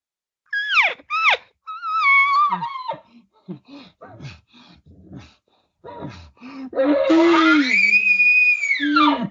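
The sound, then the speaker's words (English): A person imitates a cow to call a cow, giving a few short rising yelps and wavering vocal noises, then a long, loud, drawn-out lowing moo that swells and bends in pitch. “And then I immediately go right back to my cow sounds.”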